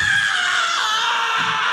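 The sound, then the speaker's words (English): A voice imitates a woman screaming in pain after being kicked in the ankle during a dance: one long, loud, shrill cry, sustained without a break and with no other talk over it. “She's screaming all over the place. She's grabbing her ankle and hopping and everything.”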